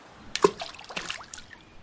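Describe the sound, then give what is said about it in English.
A skull is thrown into water with a sharp splash, followed by a second of softer sloshing and trickling as the water settles. No one speaks. “And We throw the skull into the water.”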